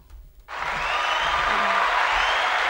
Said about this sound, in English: Everyone's clapping because Sam's leaving.